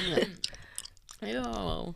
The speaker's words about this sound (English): It's because I'm chewing. I'm going to try like this.